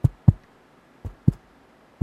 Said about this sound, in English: That's a heartbeat there. I'm having a dramatic opening. That's what we're going for.